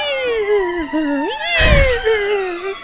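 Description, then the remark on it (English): A voice imitates screeching horror-film violins with one long, high, wavering whine that dips, swoops back up and holds for about three seconds, with a brief breathy rasp partway through. “Cue the screeching waiting. Violins.”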